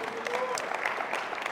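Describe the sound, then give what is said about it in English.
A church audience claps for the gospel in a steady, dense burst of applause, many hands slapping at once, fairly loud throughout, with a faint voice or tone threading beneath the clapping. “Yeah, you can clap for the gospel.”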